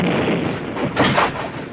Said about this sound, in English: The explosion of the heated fulminate hurled the outlaws against the walls with terrific force, wrecked the smelter and workbench, and blew out the door.